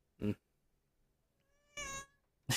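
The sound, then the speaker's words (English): A female cat meows loudly while being reached down to and petted, three separate calls over a couple of seconds, the middle one drawn out and tonal, the last cut short as she throws her head back. “I reached down to pet her and she threw her head back mid-meow and pulled out a mic range.”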